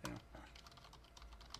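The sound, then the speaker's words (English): Rapid, uneven keystrokes clatter on a computer keyboard as someone types the word "convertible", fairly quiet, with a brief murmur of voice at the start. “This keyboard is the literal worst thing.”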